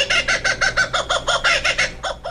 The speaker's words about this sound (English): I think that might be the kookaburra. That's the kookaburra. That's the laughing kookaburra. There are two species down there, laughing and blue wing.